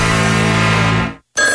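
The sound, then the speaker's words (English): A telephone rings loudly for a morning wake-up call: one long ring of about a second, a brief pause, then the next ring begins. Nobody speaks. “This is your wake-up call. Oh, thank you. While I have you on the phone”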